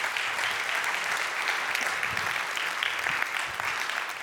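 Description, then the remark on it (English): An audience claps steadily for about four seconds, a dense, even patter of many hands at a fairly constant loudness, with no voices rising above it. “Give the Lord, give yourselves a clap.”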